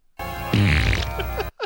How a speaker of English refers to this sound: No, he farts a few more times just in the sequence. Right. Yeah, they cut away for a second. She comes in, sits down, and they cut back to him, and he's farting again.